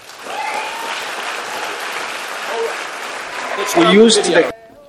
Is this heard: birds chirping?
no